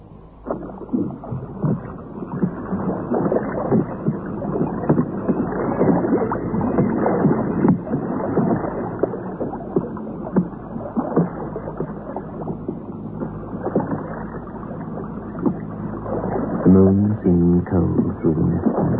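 A boat moves through water with a steady, fairly loud wash and a low rumble beneath it, continuing without a break; a brief droning tone rises near the end.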